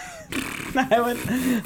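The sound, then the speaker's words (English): Someone blows a wet, buzzy raspberry with their mouth, imitating a fart in a couple of sputtering bursts lasting over a second. “I would, like, make a fart noise.”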